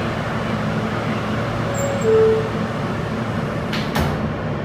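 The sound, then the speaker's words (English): Steady low rumble inside a Brooklyn-bound F local subway car running via the E line, with a brief tone midway and a sharp door-like thump near the end as the doors close and the train gets under way toward 42nd Street, Port Authority Bus Terminal. No voices. “This is a Brooklyn-bound F local train via the E line. The next stop is 42nd Street, Port Authority Bus Terminal.”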